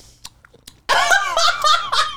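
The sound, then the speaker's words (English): A few faint mouth clicks, then a person vocally imitates someone loudly and sloppily eating popcorn on a couch while watching a movie, with a continuous run of smacking, voiced munching noises. “And she was eating popcorn and she was doing like.”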